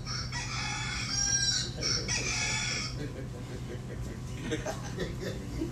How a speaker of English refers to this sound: Evidently, the rooster didn't wake you up on time. Rooster crowing late.